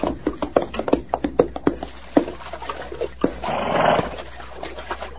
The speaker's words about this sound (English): Horses are thirsty. We'll water them after we fill the canteens. Yeah. Water's warm, but at least it's wet. It's good. Yeah, let the horses at it.